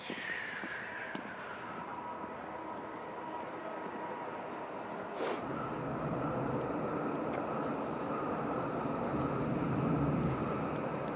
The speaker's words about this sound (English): Okay. So I hear the train now passes.